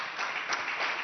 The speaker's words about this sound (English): Then clap your hands once again.